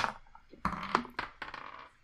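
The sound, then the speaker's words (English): Dice clatter and tumble across a hard surface in several quick bursts of bright, rattling clicks, with a brief settle between each burst, as players roll for perception checks in a tabletop game. “It says 6, and that dice is done for today.”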